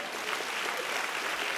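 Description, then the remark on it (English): An audience claps steadily after a movie line is recited, a dense wash of many hands applauding together at a fairly even loudness, with no voices standing out. “Come on, give him a hand clap right there.”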